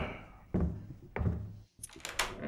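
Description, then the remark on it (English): Two solid thuds land about half a second apart, then a brief hush before a bright rattling clack, like a door latch and handle being worked as someone goes to answer the door and opens it. “I'll go get the door.”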